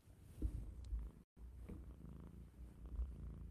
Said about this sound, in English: Oh, listen to him purr.